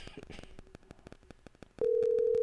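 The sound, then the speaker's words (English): Crackly, clicking line noise gives way to a loud, steady ringback tone from an outgoing phone call, a single sustained hum that runs on without a break, with no voices. “Dang. It just ring.”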